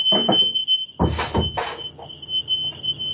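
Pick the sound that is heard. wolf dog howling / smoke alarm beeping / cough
smoke alarm beeping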